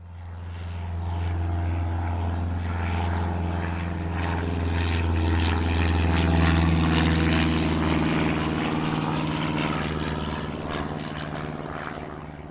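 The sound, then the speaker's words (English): A perfectly preserved, meticulously maintained World War II era propeller plane's engine drones loudly and steadily, a deep throbbing roar with a rough, buzzing texture that swells slightly midway before easing off; no voices. “shows off his perfectly preserved and meticulously maintained World War II era plane.”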